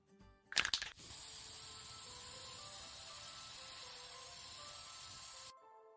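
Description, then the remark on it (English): A quick rattling shake of a spray paint can, then a steady spray hissing continuously for about four seconds as graffiti is tagged on a wall, before it cuts off abruptly. No voices. “You're just doing the work of tagging this place for me.”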